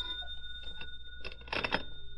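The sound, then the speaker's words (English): A telephone bell rings in a hotel at about 4 p.m., in a couple of short, jangling bursts, the second louder and fuller, over a faint steady hum with no one speaking. “It was about 4 p.m. when the phone rang.”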